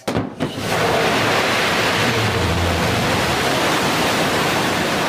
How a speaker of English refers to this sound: That's a very familiar sound by now. That was actually in October of last year as Blue Origin took off to go into space.